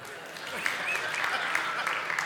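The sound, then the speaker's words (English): Many people applauding a South African accent, a steady, dense patter of many hands clapping at once, fairly loud and sustained throughout with no voices standing out. “I think that deserves a clap.”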